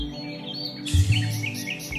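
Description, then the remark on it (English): A bird tweets in a quick series of short, high chirps, clear, layered over a steady low hum that swells briefly partway through. “Episode 18, Cage Bird. Tweet!”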